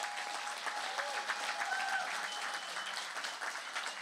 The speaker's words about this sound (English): Please, would you give them a round of applause?